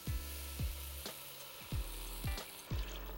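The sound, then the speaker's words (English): Three cups of water or vegetable stock pour into a hot pot of sautéed vegetables, lentils and bay leaves with a steady, loud sizzling hiss, broken by several low, gulping thumps that recur roughly every half second. No one speaks. “And 3 cups of water or vegetable stock. Just pour that right in.”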